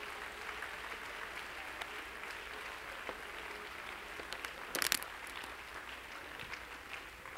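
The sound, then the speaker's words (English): An audience at a worship service applauds steadily for several seconds, clapping their hands to God. It is a dense wash of many hands clapping at once, with a brief louder burst of claps near the middle. “Clap your hands to him and love him.”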